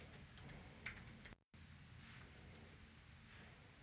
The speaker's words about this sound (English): This is exciting on a podcast when people type. Nothing better. Well, you have the sound effect, though, the typing. Oh, yeah. That's really good. It really grabs your attention.